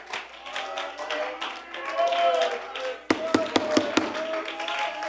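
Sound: audience applauding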